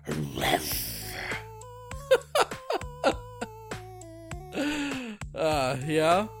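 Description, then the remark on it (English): A person does a rough, growling imitation of a roar, once at the start and again near the end, with steady stepped tones and a few sharp clicks in between. “That's my best roar in a while.”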